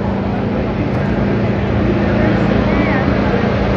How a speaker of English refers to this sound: only get one Chevrolet engine, and that Chevrolet engine is not started until the Chevrolet technician shows up the day of the race and tunes it. I'll show you him tuning the car. Okay, I guess it's ready to run. The Chevrolet technicians are done.